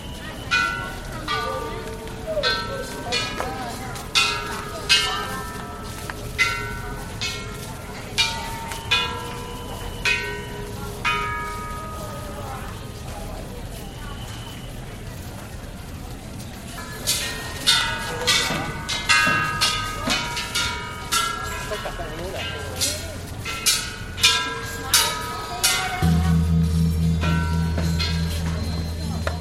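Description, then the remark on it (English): Buddhist temple ambience just outside Hong Kong as visitors tap wishing bells and gongs and spin prayer wheels, with repeated light bell strikes ringing out at uneven intervals, some overlapping, over a soft background of murmuring voices and shuffling, ending with a low sustained hum. “We leave you this week at a Buddhist temple.”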